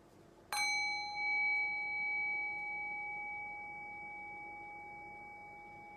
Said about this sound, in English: And I'll ring the sound of the bell. Rest your thinking mind on the sound of the bell. Allow the decay of the bell to bring your awareness into silence.